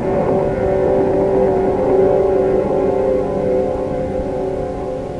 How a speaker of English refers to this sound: And then, there was the most terrible, grinding roar, as if some monstrous animal had ripped the entire bottom out of the boat.